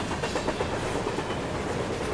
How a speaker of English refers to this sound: The sound of a freight train.